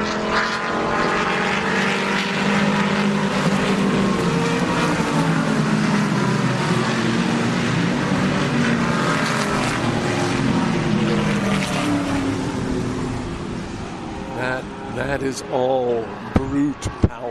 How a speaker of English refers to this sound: And here they come around. So there's going to be some very loud cars, but you can still hear them from here.